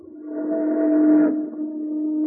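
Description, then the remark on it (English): A steamboat whistle blows a long, steady, harmonic tone that swells slightly, dips briefly near the end, then carries on at a lower, duller pitch before cutting off. “A steamboat.”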